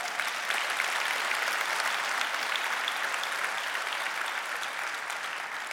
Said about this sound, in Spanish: Un aplauso al Señor.